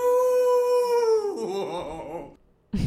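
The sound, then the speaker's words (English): A person imitates a wolf howl: one long, steady, high-pitched vocal note that breaks into a wavering, falling trail before stopping, followed by a brief pause and a short vocal burst. “Wolf, wolf, wolf, ow.”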